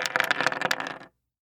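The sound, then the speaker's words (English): Dice rattle and clatter across a hard surface for about a second in a quick burst of sharp clicks, fairly loud, then stop abruptly into silence. “Here comes that dice.”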